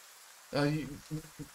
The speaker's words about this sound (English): No lightning yet. Just a heavy rain.